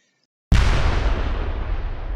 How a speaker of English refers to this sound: As she closed the fridge door, a massive bang rang through the house. The power immediately went out. All she could hear was the sound of pouring rain. Damn, I've heard that. That sounds like a transformer exploding or something.